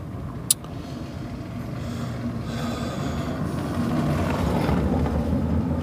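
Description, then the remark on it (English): A car passes by in the street of a small town of 14,000 people, heard through an open window, its broad engine and tire rumble swelling steadily louder over several seconds, with a brief sharp click near the start. “Oh man, here comes another car.”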